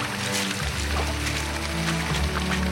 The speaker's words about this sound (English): There's water cascading off the side of it. That's probably all of last night's rain. Look at these surfers. They're having a shower in one of the cascades coming off the rock face, getting all the sand off their boards.